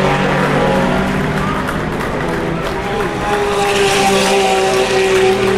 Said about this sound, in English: There goes the G-Drive Sam Bird car in LMP2. Any moment now, there goes the other Audi running, the number 9 car.